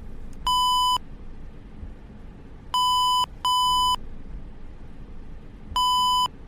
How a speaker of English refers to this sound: If the driver's nice, they will slow down just enough so that it only beeps every other second. So you will hear this instead.